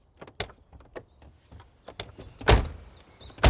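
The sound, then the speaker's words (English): A car door opens with a click and some rattling, then slams shut with a heavy thud, followed by another sharp knock, as people get out of a car after arriving at a club. Several clicks come in between, and no one speaks. “Okay, everyone, let's get out of the car and see what's happening inside.”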